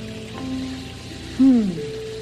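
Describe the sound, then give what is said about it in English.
Cool water runs steadily over a policeman's tired feet on a hot day, with a soft, continuous splashing hiss, while a low tonal hum sits underneath and a brief, louder falling tone rises out of it partway through. “Cool water on a hot day.”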